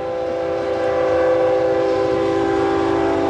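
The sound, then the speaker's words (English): A train horn blares from a train passing a baseball park during a night game, a long, steady sustained tone with rich harmonic layers, fairly loud and unbroken for several seconds, with a low rumble of rail noise underneath and no talking. “Might be the first choo-choo that we have had by the ballpark here tonight.”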